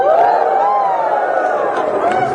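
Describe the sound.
An audience lets out a mild, sustained "woo," many voices blending in a steady, moderately loud murmur, with a few light claps scattered in toward the end.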